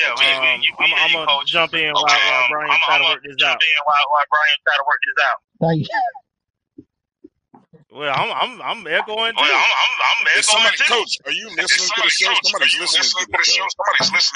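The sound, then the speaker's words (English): Voices talk over a thin, band-limited call-in phone line with a coach on the OG Strike Zone show, with the speech smeared by an echo that trails each phrase; talking pauses briefly midway, then resumes. “Guys, I don't know if you're hearing my echo.”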